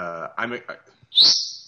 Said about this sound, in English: Well, your bird doesn't seem to approve of it. The bird's got more to say than you do right now.